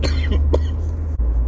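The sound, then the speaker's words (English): A couple of sharp coughs in quick succession, heard over a steady low rumble, with no talking around them. “Sorry about the cough.”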